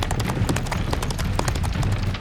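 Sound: horse hooves clip-clopping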